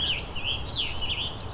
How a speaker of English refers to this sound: There's also quite a few. There's indigo bunting and American goldfinch here as well.